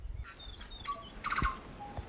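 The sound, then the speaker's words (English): A tui sings, a varied run of clear whistles at different pitches broken by a quick burst of rattling clicks and a few soft knocking notes, with no voices. “Our tui would let the silence grow in anticipation, then sing a song so loud like he'd never heard of using his inside voice.”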